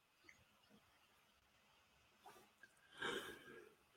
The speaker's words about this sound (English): Oh, there's my first yawn. Let's measure it. Hour 20 in.